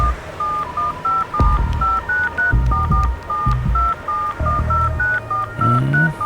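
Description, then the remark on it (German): A rapid run of short, clear mobile phone keypad dialing tones as someone dials a call, about twenty beeps in an uneven rhythm, with low thumps and rumbling handling noise underneath and no talking. “Manchmal kann man Handys aus der Ferne anschalten und eine Verbindung herstellen, ohne dass der Angerufene das mitbekommt.”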